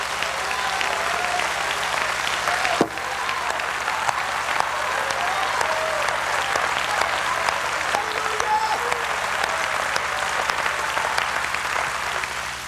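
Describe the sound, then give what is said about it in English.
A large audience claps steadily and continuously, with scattered shouts and cheers rising from the crowd, sustained at a loud, even level for the whole stretch, clapping their hands and shouting to the Lord. “Clap your hands again and shout to the Lord.”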